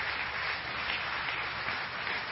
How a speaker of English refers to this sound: It's because it's the heart of God. Come on. Would y'all just clap for that? Would you just, come on.